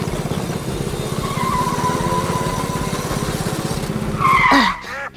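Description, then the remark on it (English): A racing car engine roars steadily during a race, its throaty rumble holding for several seconds before a sharp tire screech near the end cuts in and quickly fades. “I couldn't hear you over the sound of my engine beating you.”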